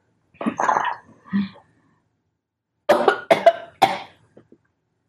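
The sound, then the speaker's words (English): A coughing fit after taking in a big hit of smoke: two rough, throaty coughs, a pause of over a second, then a quick run of three or four harsh, loud coughs trailing into faint wheezy breaths. No speech. “Oh my gosh, and I still didn't clear it.”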